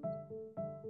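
A cat named Maisie meows twice in quick succession, each call a short, steady, fairly loud tone that drops slightly in pitch partway through. Nobody speaks.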